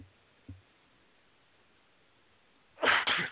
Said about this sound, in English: Pardon me. Sorry, I had to sneeze right in the middle of my sentence.